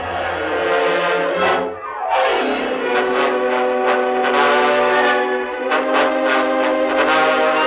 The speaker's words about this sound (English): Get the bugler on the double. Have him sound boots and saddle. We ride under full pack in 5 minutes.